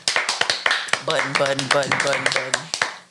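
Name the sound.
hand clapping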